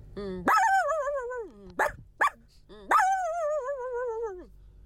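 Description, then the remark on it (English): A girl's voice imitates a small dog with high-pitched, drawn-out yelping cries: two long wavering calls separated by a couple of short, sharp yips. “And here's a little dog.”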